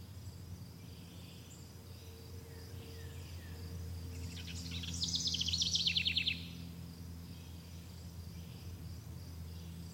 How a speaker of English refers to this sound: Notice your surroundings by just listening to the beautiful sounds around. Once again, those birds, the fresh air, the green lushes.